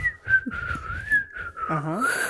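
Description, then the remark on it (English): A person whistles an imitation of the bird's whistling from the film Mary Poppins: a sustained high tone with quick warbles and small pitch wobbles, briefly joined near the end by a rising voiced sound underneath. “That the bird that she has on her hands is going...”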